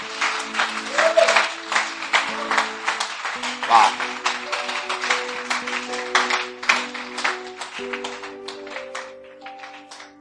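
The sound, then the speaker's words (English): A large crowd claps and applauds for the Lord steadily for about ten seconds, dense and lively, over sustained keyboard chords, with a brief voice exclaiming partway through. “Please clap for the Lord.”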